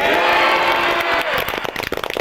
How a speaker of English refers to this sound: Cheers from her friends in the JROC drowned out the few mutters and hisses